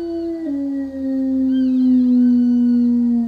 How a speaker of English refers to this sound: And I heard a strange noise, like a howling or some kind of a chirping or something like that. And it was constant. It was consistent.